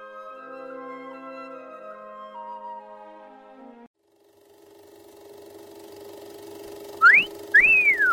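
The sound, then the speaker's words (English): A sharp two-part wolf whistle, a quick rising swoop followed by a rising-then-falling one, rings out loud and close over a steady mechanical hum, after a stretch of sustained tones. “Yes, sir, the hot dogs at our concession stand do rate an appreciative whistle.”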